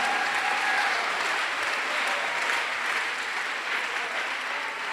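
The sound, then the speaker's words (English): An audience claps hands for Jesus during a sermon in sustained, dense applause, steady and fairly loud throughout, with no one speaking over it. “Are you clapping your hands for Jesus, somebody?”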